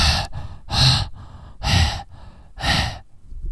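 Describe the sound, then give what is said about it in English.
Someone imitates a player heavy breathing into a headset microphone during an online game: four loud, harsh breaths, roughly one per second, right up against the mic, with no talking. “C, spend the whole game heavy breathing”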